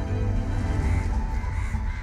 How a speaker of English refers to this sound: they're all moving in some kind of a formation, and then they swirl around in the sky, blocking the sunlight completely, and they dart through the window, many of them dying on impact. But now the room is flooded with hundreds and hundreds of birds.